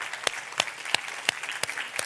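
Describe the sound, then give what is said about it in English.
An audience claps hands in praise of the Lord, a steady rhythmic beat of sharp, crisp claps about three per second rising above a dense, continuous wash of scattered clapping. “Can we give the Lord just a hand clap of praise for his word?”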